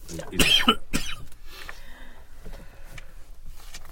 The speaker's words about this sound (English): He keeps breathing in his soda. Yeah, he's choking.